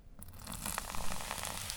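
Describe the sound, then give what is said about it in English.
Whiskey hisses and sizzles as it's poured onto a wound to burn it off before dressing, sending up a lot of steam, a steady crackling fizz that swells slightly and holds for almost two seconds with no one speaking. “I'm going to pour it right in the wound and let it burn off a little before I start dressing him.”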